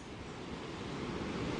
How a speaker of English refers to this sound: So here we have a very steep sand dune, the waves crashing down below. I can see why you're losing a bit of your coast here.